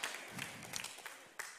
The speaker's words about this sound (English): Yeah, you can clap. That's good preaching.